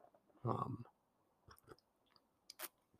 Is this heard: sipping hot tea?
yes